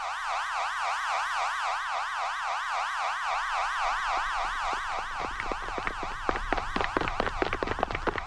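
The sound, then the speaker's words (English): A loud camp warning siren at Camp Shamrock, signalling everyone to take shelter, wails continuously, its pitch rising and falling in quick, regular sweeps, while a rough, crackling rumble builds up underneath toward the end. “And we have a paging system and a siren, and you know, everybody will know it's them a when siren it goes off.”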